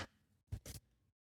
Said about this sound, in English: I just realized my roommates must think I'm crazy because I just clap randomly throughout the night.